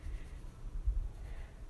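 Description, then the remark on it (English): Soft, steady scratchy rubbing of a paper blending stump worked back and forth across drawing paper to blend shading, faint, with no talking. “So this is where the paper stub works really well.”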